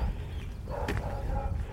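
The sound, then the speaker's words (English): A single short woof from a brown Labrador cross dog, over a low rumbling background with no talking. “I'm very fortunate to have a dog who politely barks when he wants to go out. Just one little woof, and then we'll woof again when he wants to come back in.”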